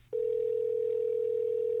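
telephone dial tone

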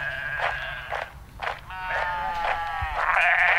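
sheep bleating

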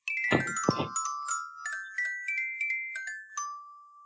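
doorbell chime ringing

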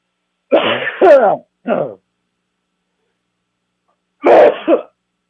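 coughing

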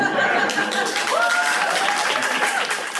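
cheering crowd

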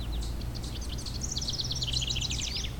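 house wren song

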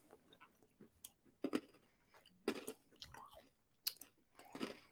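chewing a crunchy snack

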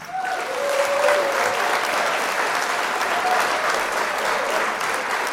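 applause

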